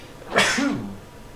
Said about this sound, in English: I need to neti pot another couple times to get the rest of these brain-eating amoeba out of my nose that are making me sneeze.